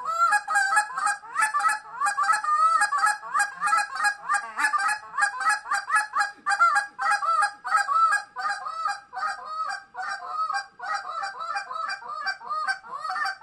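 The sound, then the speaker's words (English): A world champion goose caller uses a goose call to imitate Canada goose honks in a rapid, nonstop stream of loud, nasal honks and clucks, fast and rhythmic for the whole stretch, with no talking. “And in case you're interested, here's what the world goose calling champion sounds like.”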